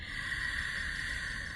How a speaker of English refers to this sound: Now, if you have the practice of Wujiai, start to introduce that, breathing in through the back of the throat, a tiny constriction.